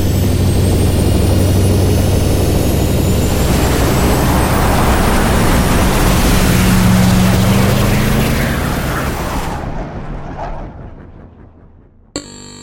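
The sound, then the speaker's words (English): A spaceship's engines power up for the return to Earth. A loud, sustained roar with rising whining tones and a dense rumble swells, then fades away over several seconds, ending with a brief clunk. “engines ready. Return to Earth initiated. Buckle up, boys. We're going home.”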